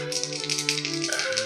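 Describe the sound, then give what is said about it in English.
Dice rattle and clatter briefly, a dry, continuous rolling sound over a steady background of sustained musical tones, with no one speaking; the dice are rolled to keep composure in a game. “You do, and roll to keep your composure to see how well you do.”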